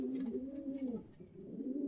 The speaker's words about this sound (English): now to the loftier realms occupied by pigeons. Homing pigeons, to be exact.